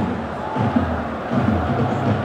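A large football stadium crowd of just short of 91,000 roars at a Barcelona versus United match as Barcelona take a free kick, a steady, dense wash of voices with low tonal chanting threading through and brief swells of louder shouting, no single voice standing out.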